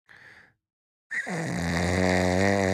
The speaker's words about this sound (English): That's Joe Biden right there, snoring when he falls asleep. That's him in the middle of a speech. just z's out.